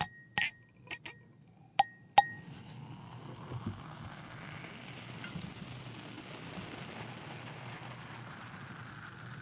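A few sharp glassy clinks ring out at the start, then a steady, soft crackling fizz of champagne bubbles in a glass continues with no talking.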